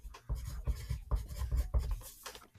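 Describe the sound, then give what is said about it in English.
Scratchy strokes of a pen or pencil moving across paper in quick bursts as someone writes "front" and "back" on the left and right sides of the paper, with short pauses between the marks and no voices. “on the left side of the paper, write front, and on the right side, I want you to write back.”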